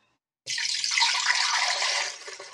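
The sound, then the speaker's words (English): Half a cup of water is poured into a Vitamix blender jar, a steady, bright splashing stream that starts abruptly after a short silence and runs for a couple of seconds, fairly loud, with no talking. “So what I'm going to do is I'm pulling out my Vitamix, and I have all my ingredients laid out. And what I'm going to do is I'm going to pour in my half a cup of water.”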